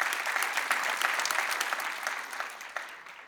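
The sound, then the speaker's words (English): An audience claps steadily, a dense wash of many hands with sharp individual claps standing out, tapering off gradually over a few seconds. “Yeah, that's a good place to clap.”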